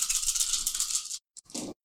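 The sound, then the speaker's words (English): Dice rattle steadily for about a second, then a brief pause, a single sharp click and a short final clatter as they land. No voices are heard. The dice are rolled for a sneak check and give one success. “The more dice I roll, the”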